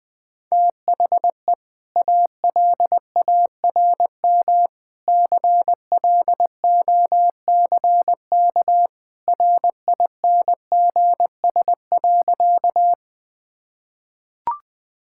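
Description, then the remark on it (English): An alarm clock beeps insistently for a morning wake-up, a steady mid-pitched electronic tone pulsing in rapid bursts for about twelve seconds, loud and alone, then stops; a faint click follows. “The alarm clock rings.”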